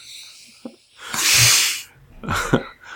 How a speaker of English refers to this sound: And now I just take a big old sniff.